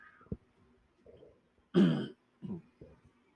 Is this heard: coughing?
yes